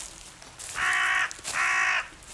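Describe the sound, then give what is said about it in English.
A crow caws twice in a row in a forest, each call a harsh, drawn-out rasp of about half a second with a short pause between them, loud with no one talking. “Do you think I'm going to die here, Mr. Crow?”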